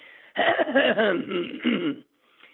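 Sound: coughing and throat clearing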